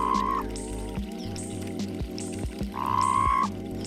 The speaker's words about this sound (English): The call of the Sonoran Desert Toad has been described as a weak, low-pitched toot, lasting less than a second.